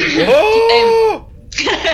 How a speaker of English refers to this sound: Sorry, I've got a really tickly cough now.